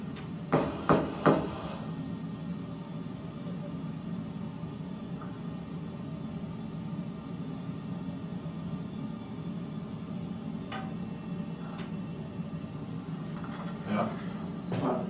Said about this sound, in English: So I thought it was like drops of water hitting this metal lid to the basement. But I noticed each time you would knock, I would hear a little thing.